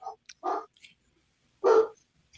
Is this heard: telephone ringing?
no